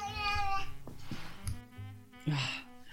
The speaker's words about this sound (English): My poor kitty, she's very needy right now, so I have to be there for her.